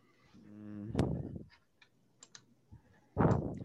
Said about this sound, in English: I can hear him clicking. I can hear him. He opened the file.